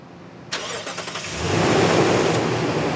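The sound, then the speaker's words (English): A four-wheel drive pickup truck engine cranks to life with a sharp catch, sputters briefly, then revs up into a loud, steady roar, out on sand dunes. No one speaks. “I've borrowed a four-wheel drive pickup truck because there's no way my little Prius could have made it out here.”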